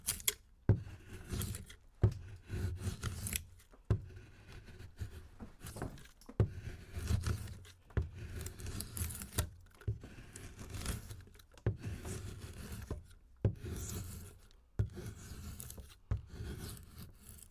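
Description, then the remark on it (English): A sharp draw knife shaves wood on a shave horse, a wooden bench with a foot-operated wooden clamp, in about ten steady, rasping strokes, each a scraping pull followed by a brief pause, curling off thin shavings. The sound is moderately loud, and nobody talks. “But this is the draw knife in use.”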